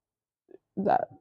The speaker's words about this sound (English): Sorry, I just burped.